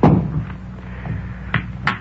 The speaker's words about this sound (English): Now let's try for a cannon off the cush.